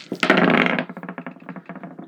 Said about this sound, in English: All right. So let's see what the dice have to say. We have, let's see, who am I rolling for first? Let's go with Anal first. We're going to roll some dice here. Anal ends up with a 4.